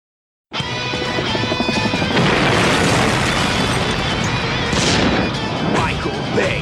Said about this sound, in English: Explosions from Michael Bay! Boom! Michael Bay explosion! Bam! Boom!